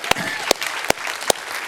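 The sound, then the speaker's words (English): An audience breaks into a round of applause: a steady wash of many hands clapping, with four loud, evenly spaced claps cutting through the crowd sound at a brisk rhythm. “So, David, can we give a round of applause for David Vickery?”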